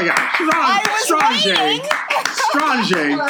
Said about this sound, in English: Wow, that I gotta clap for that.